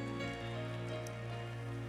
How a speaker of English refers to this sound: Anybody grateful to be in the house of the Lord on Tuesday night? Clap your hands one more time and give God a great praise.